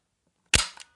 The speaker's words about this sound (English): It's a pencil case, but look. Listen, look. It's got a pencil. Got a pencil that pops out.